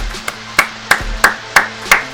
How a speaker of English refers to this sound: That round of applause is for you folks out there for contributing with the vote, for giving us a great year of, listening and what have you to me talk about Beşiktaş for the most part, and a few other folks.